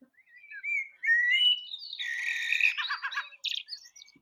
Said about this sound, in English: Can you hear that? Blackbird. That is a blackbird. Very good.